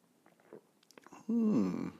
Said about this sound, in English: To the simultaneous sip, go.